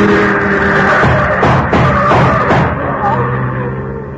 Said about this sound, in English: Look out! That car! Get down, both of you, get down!